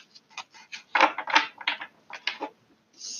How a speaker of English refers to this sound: I am shuffling the Modern Witches Tarot based off of faith.